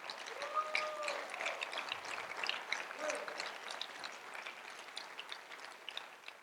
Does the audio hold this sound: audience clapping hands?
yes